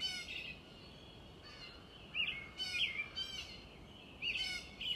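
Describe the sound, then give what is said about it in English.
Several songbirds chirp and warble in short bursts in the morning over a steady, soft hiss of gentle wind in the trees, their calls coming and going with brief pauses, fairly quiet. “You can hear them singing. You can hear the gentle wind in the trees.”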